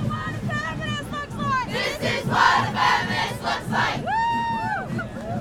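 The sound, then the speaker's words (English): An enormous protest march crowd shouts and chants over a constant roar of many voices. Individual yells rise above the din, with a long, drawn-out cry near the end. “In this enormous crowd, I notice only a few police officers.”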